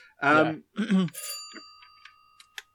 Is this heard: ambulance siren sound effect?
no